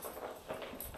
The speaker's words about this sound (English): He is eagerly batting around his treat ball, which I have to put his kibble in a treat ball because he will scarf it down too fast. So I have to slow him down. And I feel like this gives him something to do also.